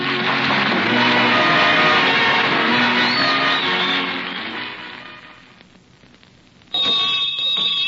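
A loud electric school bell rings continuously with a harsh metallic clang, fades away, then abruptly starts ringing again near the end. No one speaks.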